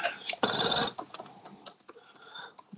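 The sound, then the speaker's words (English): Typing on a computer keyboard while looking up the year the film Skin Deep came out: a quick flurry of dense clacking keys early on, then scattered, irregular taps continuing at a soft, fairly quiet level with no voices. “He's using his tippy-tappy horse feet.”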